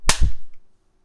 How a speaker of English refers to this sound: All right, guys, if you're trying to play along, after you hear me clap, hit play on your device of choice and enjoy the Always Bet on Geek commentary of the Umbrella Academy.